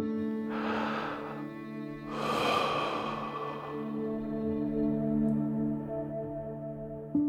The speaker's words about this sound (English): One thing that you might have heard a lot of is this idea of doing some deep breathing, and there is some value to doing that, which is to slowing down the way you breathe and really making sure you're breathing from your abdomen